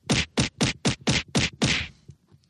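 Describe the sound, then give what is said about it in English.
A rapid series of six loud, punchy kick-and-punch impact effects in a quick steady rhythm, ending with a slightly longer whooshing hit, with no talking. “Oh my God, I have a kick punch sound effect now.”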